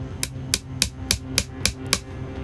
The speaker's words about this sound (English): So I'm going to put this in here. Yes. And then you're going to film me hammering this bit here. See?